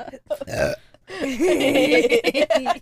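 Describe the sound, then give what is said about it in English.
A couple of short guttural catches, then a long, loud, drawn-out burp after drinking soda, with a rumbling, wavering pitch, sustained for nearly two seconds. “I might throw up though. It might not be a burp.”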